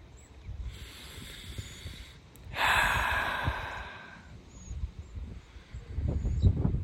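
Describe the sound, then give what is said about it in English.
Slow, deep breaths drawn in and let out, a long airy inhale swelling then fading into a softer exhale, with no talking. “Breathing, huh? Breathing.”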